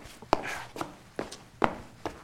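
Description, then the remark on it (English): Quick footsteps of someone running up the old wooden stairs of an old hall to have a look, five firm, evenly spaced hollow steps at a steady hurried pace, with no voices. “I'll run up and have a look.”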